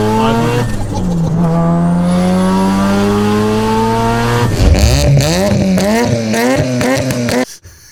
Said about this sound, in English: This is the riceriest car that I love. And the reason why is because it's the Wankel rotary engine, dude. They don't make the rotary engines.